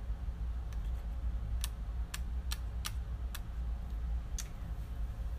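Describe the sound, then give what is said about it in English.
A handful of sharp plastic clicks and taps at irregular intervals as a keyboard is taken off a tablet and handled, over a steady low hum with no talking. “Let me take the keyboard off.”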